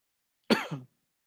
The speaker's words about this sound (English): Is that supposed to be a cough?